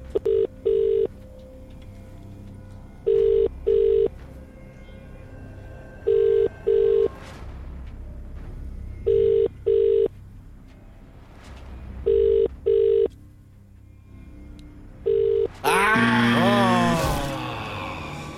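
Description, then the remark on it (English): A phone call to a randomly selected person rings out repeatedly, each ring a double pulse recurring about every three seconds with no answer, before a loud, harsh electronic blast cuts in at the end. “Remember, you need to answer the phone within 5 rings and know today's featured artist.”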